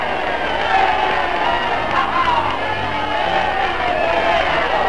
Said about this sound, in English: In New York's Times Square, and in every city, town, and hamlet, millions cheer VE Day.